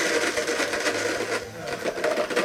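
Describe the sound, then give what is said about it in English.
A blender runs steadily, its loud motor whirring with a low hum while chunks of ice cubes, fruit and seeds rattle and clatter against the jar throughout, with no voices. “And put some ice cubes in there. All right. There we go. All right. All right. And let's blend that, baby.”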